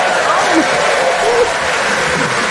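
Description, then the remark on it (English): Loud, sustained applause from a large crowd, a dense steady wash of clapping that holds at full strength throughout without pausing, with faint voices mixed into the roar. “Do you hear that roaring applause?”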